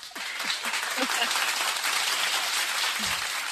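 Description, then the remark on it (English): A crowd breaks into sustained applause for a guest speaker, dense overlapping clapping at a steady, fairly loud level throughout, with a few faint voices mixed in. “Ladies and gentlemen, round of applause.”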